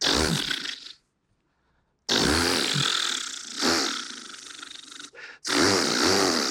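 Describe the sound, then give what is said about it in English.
A voice imitates a chainsaw starting up: a short rasping burst, a pause, then long loud buzzing revs that rise and sputter. “But sure enough, he got the chainsaw and he started it.”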